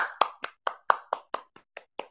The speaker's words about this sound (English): Yeah, I had to give myself a round of applause because I ain't got no buzzards.